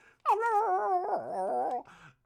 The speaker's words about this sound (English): So, it's windy. There's some howling dogs.